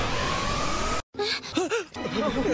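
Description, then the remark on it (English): A second of harsh, steady rushing noise cuts off abruptly, then a voice lets out exaggerated, over-dramatic anime-style gasps with swooping, rising-and-falling pitch, loud and breathy. “that is the very well-known anime gasp, and it happens for a lot of different reasons in anime.”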